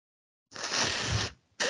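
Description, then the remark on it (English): Someone blows their nose: a long, harsh, breathy blast lasting under a second, a brief pause, then a shorter second blow. No one speaks. “Well, you're fucking blowing your nose.”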